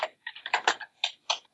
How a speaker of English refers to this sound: That is some of the loudest typing I think I've ever heard in my life. Really loud typing. Sorry, my bad. As an aside, I got a new keyboard which has these awesome mechanical keys that are great for gaming.